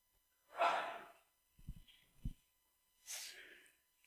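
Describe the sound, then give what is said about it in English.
A single sneeze comes after a sharp noisy intake of breath and two soft low thumps, with no talking around it. “I wonder if we'll sneeze in heaven.”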